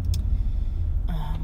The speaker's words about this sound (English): I'm behind a big garbage truck. It's making me a little nervous. I don't know why he's stopped right now in the middle of the fucking road, letting people go.